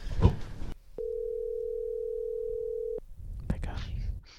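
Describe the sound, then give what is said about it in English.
A steady, unbroken telephone dial tone hums for about two seconds, starting and stopping with faint clicks, between brief stretches of muffled voices and handling noise. “Can we phone a friend in this situation, or is it?”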